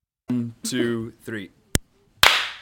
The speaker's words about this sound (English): One, two, three. Cool. That's our daily kind of like clapping for frontline workers. We've kind of stopped the pots and pans. Great. We do one clap and that's it.